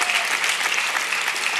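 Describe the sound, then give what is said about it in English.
An audience claps together in a steady, dense wash of applause that stays evenly loud throughout, with no voices rising above it. “Go ahead and clap.”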